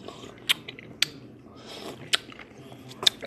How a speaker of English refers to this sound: And hold on one moment. I'm sipping a cup of coffee. Hold on a minute.